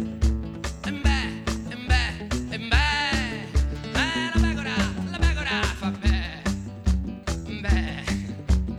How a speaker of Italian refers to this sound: E beh, e beh, e beh, la pecora, la pecora, fam beh.